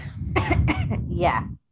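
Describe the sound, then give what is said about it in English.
A loud burst of several rough coughs in quick succession, lasting about a second and a half, with no talking around it. “I still have a bit of a cough, so you're going to have to just listen to me cough every now and then.”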